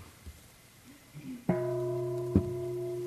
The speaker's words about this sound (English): Okay. If I ring the bell